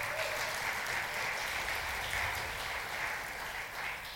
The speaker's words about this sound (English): Just get applause for being 21. That's not bad, is it?